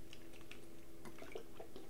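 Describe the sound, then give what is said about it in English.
Someone quietly drinking water during a water break, with soft wet mouth sounds, small gulps and liquid clicks over a couple of seconds, with no talking. “I think we had a water break, but fuck it, we can have more water breaks.”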